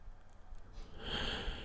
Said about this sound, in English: Night falls, and we fall into step. An uncertain silence, no torches, shadowy shapes of trees picked out by moonlight, the breeze in the leaves, cows coughing in the fields.